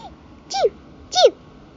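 A male cat named Mochi sneezes twice, about two-thirds of a second apart. Each sneeze is a short, sharp, hissy puff with a brief squeaky tone sliding downward, heard over a quiet background.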